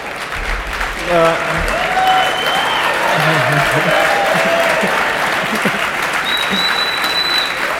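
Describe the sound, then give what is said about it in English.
A crowd claps steadily and loudly for several seconds at an invitation for two fans to travel to Germany, a dense wash of applause with a few voices and brief whistles or cheers mixed in. “What you're clapping for, two of you have got to travel with us to Germany.”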